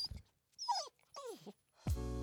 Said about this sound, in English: Sorry. My dog's downstairs. She says hi. She wishes she was on here. Ah, yeah. Darn dogs ruining my calls.